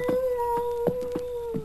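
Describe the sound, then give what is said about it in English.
An eerie, sustained howling cry in a dark canyon holds one steady, wavering pitch, like a coyote or wolf but not quite either, while soft rhythmic thumps pulse beneath it at irregular intervals. “Is that a coyote or a wolf? It not sound like either one.”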